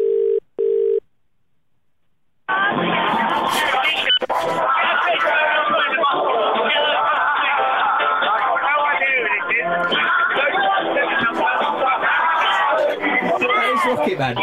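A phone rings twice, then after a short pause a call connects and a song plays steadily over the tinny, narrow-band line, with background noise mixed in.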